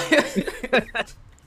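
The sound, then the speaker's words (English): A few short coughs come in quick, uneven bursts, mixed with a rough clearing of the throat, with nothing else going on in the background. “Also, I do apologize for all the coughing.”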